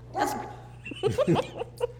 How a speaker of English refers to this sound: Sorry, my dog's like freaking out. Was he humping something? No, he's throwing his body against the floor.